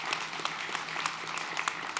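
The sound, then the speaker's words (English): A church audience applauds after hearing its missions fund bought a widow a new home, with steady, dense clapping from many hands at moderate volume throughout, with no one speaking over it. “And so, you can clap for that, for sure.”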